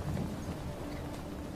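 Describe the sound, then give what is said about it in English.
A steady, deep rumble of a thunderstorm with lightning overhead, wind-like noise washing over it, moderately loud and unbroken throughout, with no voices present. “And then suddenly, out of nowhere, you guys hear lightning and storming above you.”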